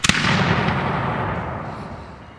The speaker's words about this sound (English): Finally freed from the land, 4 of the 10 sails are set and a salute is fired.